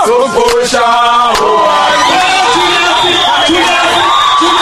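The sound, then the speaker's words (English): A loud crowd of political fans in Durban, South Africa, cheering and shouting together at a conference for politician Julius Malema, head of the governing party's Youth League, with many overlapping voices whooping and calling out in a continuous, excited roar. “To cheer at a crucial conference for the country's most controversial politician, Julius Malema, head of the governing party's Youth League.”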